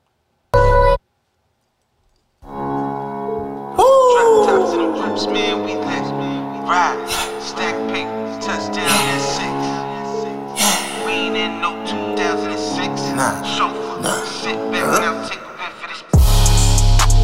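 A rap song starts after a short blip and a brief pause, then plays loud and steady with a heavy bass beat, layered instrumentals and rhythmic vocals running through to the end.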